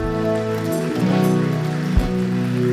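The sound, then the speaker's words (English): A crowd claps steadily in a dense, rain-like patter, with sustained musical chords ringing underneath and one brief low thump near the end. “Hey, if you raised your hand, you can clap.”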